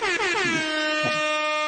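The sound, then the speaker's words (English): A single loud air horn blast holds one steady, brassy tone for nearly two seconds, with a slight wobble at the start, sounding overpowering. “No, I need my air horn for that.”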